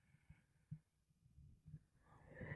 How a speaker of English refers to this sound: Stop making me yawn. You need to go to sleep.